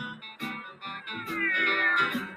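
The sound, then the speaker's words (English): A cat yowls in a few drawn-out, wavering meows that slide up and down in pitch, fairly loud and continuous with no talking. “Up and down the block, cats pant.”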